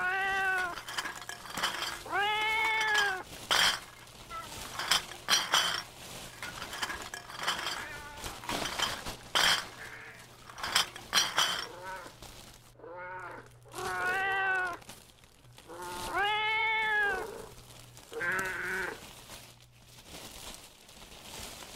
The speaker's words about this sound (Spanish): Podía escuchar los maullidos del gato que, de algún modo, había regresado.